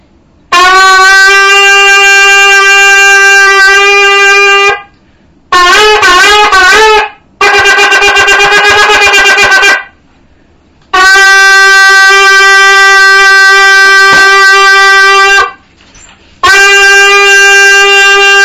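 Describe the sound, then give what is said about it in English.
A loud, brassy shofar sounds a sequence of blasts: a long sustained note, then short wavering broken notes (shevarim-teruah played together, with a small pause in the middle without breathing), followed after brief pauses by further long, steady blasts. No one speaks. “If you notice, I did the Shvarim Trua B'Nishim Achas, but according to the Mishnah Berurah, with a small pause in the middle, without breathing in the middle.”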